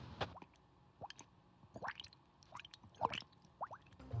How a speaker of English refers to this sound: the sound of the bubbles either persisted to signal sinking or came to a halt if the person floated to the surface